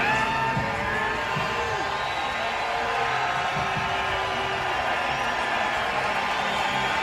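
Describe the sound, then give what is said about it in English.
A large stadium crowd cheers a player as he takes the field for the introductions, a dense, unbroken roar of many voices that holds at a steady, loud level from start to finish with no pauses. “Well, they cheered him like crazy when he entered the field, you know, when he yep.”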